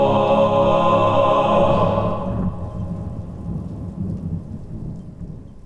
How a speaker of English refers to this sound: And with a crack of thunder, we roll into the breakaway.